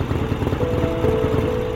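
A motorcycle ridden by a man, a biker, arrives, its engine rumbling steadily with a low, throbbing pulse and a faint whining tone on top, holding a fairly constant loudness throughout, with no voices.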